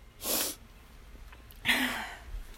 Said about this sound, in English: Oh my God, I'm about to sneeze again. Oh my goodness. Phew!